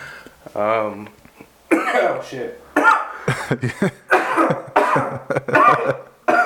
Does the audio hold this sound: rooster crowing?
no